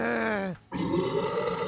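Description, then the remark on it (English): A loud monstrous roar of a sea monster: a deep voiced groan slides downward in pitch, breaks off briefly, then returns as a rough, rumbling growl. It sounds like a voice imitating the creature. “The monster roared at Mary.”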